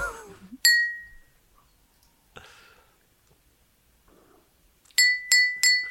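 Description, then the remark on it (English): A glass of water is struck once, giving a bright, high ringing note that fades over about a second. After a short noisy pause, during which some of the water is gulped to see if the note changes, it is tapped four more times in quick succession, each ping ringing clearly. “I'm going to play a note and then I'm going to gulp. I'm going to gulp the water and we'll see if it changes.”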